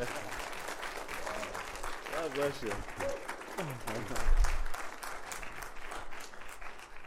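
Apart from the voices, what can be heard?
audience applause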